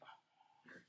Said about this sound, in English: Bro, he's barking at the bone next to your foot, you goofball.